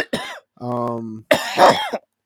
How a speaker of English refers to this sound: That was like a late reaction for you to cough that hard. You're about to be high as shit.